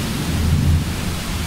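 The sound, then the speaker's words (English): A heavy downpour hisses steadily while a deep, rolling rumble of thunder swells and fades partway through, loud, with no voices. “I don't know what the records are, but have you heard the rain this week? Sounds like that.”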